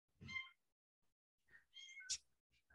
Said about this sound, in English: I hear the kitties. Yeah. They're hungry.